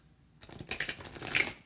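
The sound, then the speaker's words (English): A short burst of a deck of tarot cards being shuffled again, a quick flurry of papery riffling and flicking that starts after a brief quiet moment and builds slightly, fairly soft, with no talking. “So I would shuffle it again.”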